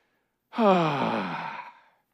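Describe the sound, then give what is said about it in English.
A single long, weary sigh from a person imitating a tired noise, voiced at first and trailing off into breathy air over about a second and a half, fairly loud, with no talking. “So, what does a tired noise sound like?”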